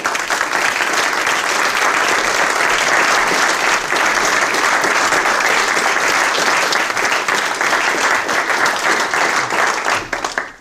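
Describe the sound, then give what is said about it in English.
A live audience gives sustained applause as Tony Evans is introduced, loud and dense, with many hands clapping in a continuous roar for about ten seconds before tapering off at the end. No voices stand out. “Please give him the biggest round of applause of all because, well, he's our boss, Tony Evans.”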